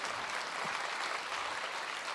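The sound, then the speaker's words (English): A crowd applauds steadily, a dense wash of many hands clapping at an even, sustained level with no voices standing out. “You can still applaud democracy in America.”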